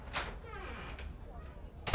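A door at the other end of a long hallway in a five-story building opens with a short creaking sweep and later bumps shut, the sounds faint and distant, with a soft low murmur of voices underneath.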